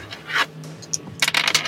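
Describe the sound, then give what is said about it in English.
Dice tumble across a tabletop in a 2d6 plus wits roll that totals 9: a short rattle, a brief lull with a single click, then a quick burst of bright clattering taps as they settle. No one speaks. “If you want to roll me 2d6 plus wits.”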